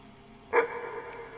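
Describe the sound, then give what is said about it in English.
A large dog-like creature lets out a single loud bark that starts abruptly after a quiet moment, its tone lingering and fading over the following second. “Sorry, I don't speak dog, spider, thing.”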